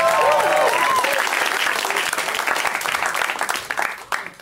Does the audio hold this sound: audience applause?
yes